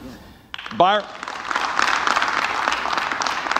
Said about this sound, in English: So I probably have like 20 Byron people clapping right there.